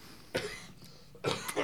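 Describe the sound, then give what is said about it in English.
A person coughs: one sharp cough, a short pause, then two quick coughs in a row. No talking, just the harsh, breathy bursts against a quiet background. “Important to note that the coughing is not part of the sound.”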